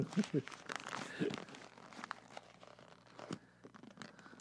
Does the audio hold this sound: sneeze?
no